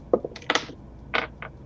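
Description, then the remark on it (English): A quick series of sharp clicks and clatters, dice rolled for a perception check striking and tumbling across a surface in irregular bursts and landing on a 15, with no voices over them. “Dice just went flying.”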